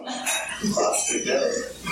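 A dog grunts and snorts in a continuous stretch of rough, snuffling breaths and throaty noises, fairly loud and steady for about two seconds.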